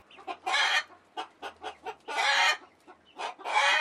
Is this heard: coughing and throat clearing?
no